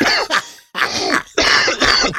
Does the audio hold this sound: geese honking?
no